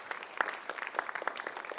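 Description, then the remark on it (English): A crowd applauding school administrators and teachers, with dense overlapping hand claps forming a steady, moderately loud patter and no voices on top. “But also want a round of applause for all these school administrators and teachers that are here.”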